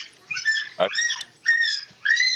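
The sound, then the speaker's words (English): A bird calls in three or four harsh, squawking bursts with a high, buzzy tone, separated by short pauses, with no one talking over it. “We got a bird in the podcast.”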